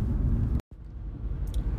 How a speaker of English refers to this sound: Alright, I feel like I really shouldn't be doing this, but I feel extremely safe in my car. I'm driving in a heavy snowfall and I'm talking to my phone, to an Anchor app.